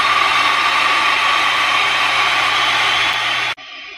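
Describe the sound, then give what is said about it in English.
A loud, steady burst of applause fills about three and a half seconds with a dense, hissing wash of clapping, then cuts off abruptly into a brief, quieter tail. “And round of applause, I think, don't you think?”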